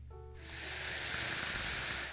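A vape being inhaled: a steady, airy hiss swells in after a brief pause and holds for about two seconds, with a faint gritty crackle running through it. No one speaks.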